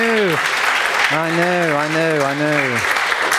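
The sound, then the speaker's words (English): A church audience claps steadily and loudly throughout, with voices cheering and whooping over the applause in sustained, rising and falling shouts, applauding God after the offering total is announced. “Will you clap and cheer and applaud God? Yes.”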